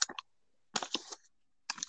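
Crisp crunching in three short bursts separated by brief silences, like Oreo Crunchy Bites being bitten and chewed, with no talking.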